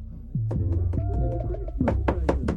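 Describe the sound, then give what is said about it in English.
A series of firm knocks on the neighbours' door, struck in two quick rhythmic bursts, fairly loud over a low background rumble; someone knocking to tell the kids next door to stop their noise. “I'm going to go next door. I'm going to have a word with them kids.”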